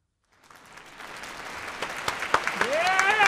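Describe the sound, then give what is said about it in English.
A canned applause sound effect, played from a clap button, swells up from silence into steady clapping from a crowd, growing louder, with rising whoops and cheers breaking through near the end. “Give me the clap button.”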